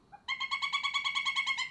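A pileated woodpecker's flight call played from a website recording: a soft lead-in note, then a fast, steady series of about a dozen loud, ringing, nasal notes, clear with no other sounds.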